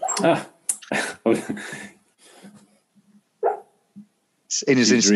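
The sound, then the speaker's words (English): A dreaming dog gives a few short, muffled barks in quick succession, then falls quiet before a longer, higher-pitched whining yelp at the end; the sounds are moderately loud. “I can hear a dog in the background.”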